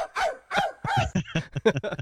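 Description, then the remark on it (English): A person imitating a dog barking: around eight short, sharp woofs in quick, uneven succession, fairly loud, with no other sounds behind them. “No, I kind of want to hear that barking clip again.”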